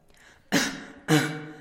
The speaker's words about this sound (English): She dragged it from the waters, trying desperately to breathe life into the body. Eventually, he coughed and spluttered and deliriously muttered incomprehensible words.